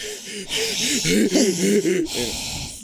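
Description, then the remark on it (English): A person breathes heavily and wheezily, loud, with raspy voiced gasps and snorting exhales running continuously for a few seconds and no talking. “Can y'all hear me breathing?”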